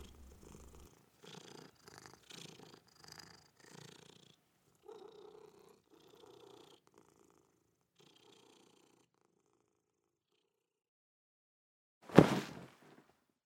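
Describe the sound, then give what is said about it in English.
A cat purrs as it is stroked, a soft, steady rhythm of breathy pulses that fade out, followed by quiet and then one sudden, sharp loud burst near the end. “She purrs as you stroke her and settle her.”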